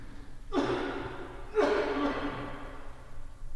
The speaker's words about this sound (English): Notice how I was practicing good practice there, coughing into my elbow.